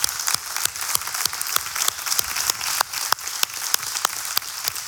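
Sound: church audience applause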